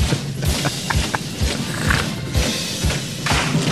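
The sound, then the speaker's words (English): Rhythmic percussive stomping and banging from performers doing Stomp, a steady run of loud low thuds and sharp clacks roughly every half second, with bright metallic hits in between, and no voices. “Stomp. They're doing Stomp.”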